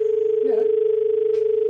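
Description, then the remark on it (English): A steady, continuous telephone dial tone hums at a constant pitch throughout, with a couple of brief faint voice sounds and a soft click briefly breaking over it. “It's just got a dial tone.”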